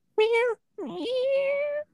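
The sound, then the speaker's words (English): A person imitates a cat, giving two clear meows: a short one, then a longer, drawn-out meow that slides upward and holds before stopping. “Let me try it. Meow.”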